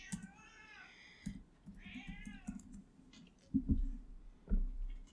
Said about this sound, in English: Ew. What a dumb cat. He's dumb, but he's beautiful.